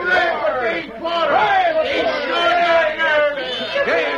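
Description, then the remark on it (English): A crowd of townspeople in Wayne cheers and shouts together for a young man who brought in stolen Wells Fargo money, many overlapping voices rising and falling in a loud, continuous roar that holds steady for several seconds. “Oh, they're cheering for you, Dave.”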